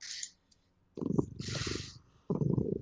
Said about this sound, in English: And I hear a cat. Meow. Yes, Damien's getting very lovey tonight. Mm. He's just making his guest appearance, Ranma.